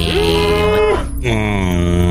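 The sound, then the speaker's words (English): A young cow moos loudly, two drawn-out, droning calls back to back with only a brief break between them, and no one talking. “I have spotted a young cow.”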